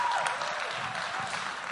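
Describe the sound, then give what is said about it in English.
An audience applauds steadily, a dense wash of many hands clapping at an even, fairly loud level with no pauses, and no voices standing out above it. “Can we give her another hand clap?”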